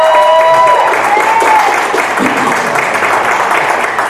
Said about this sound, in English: Okay, so now let's clap for our favorite X-Men.